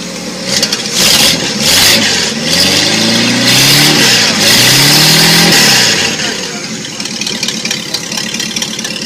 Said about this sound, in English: I'm thinking an older engine for this one, by the way, it sounds. You are correct. I think it's an old Mopar Hemi. Like a Hemi Charger or a Hemi Cuda? No. It's not revving very high.